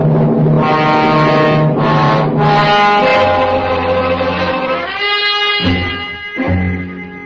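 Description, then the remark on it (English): Police squad cars arrive with loud, blaring horns or sirens, overlapping tones sounding steadily, shifting pitch and cutting in and out toward the end, with no talking. “And then I waited for the squad cars.”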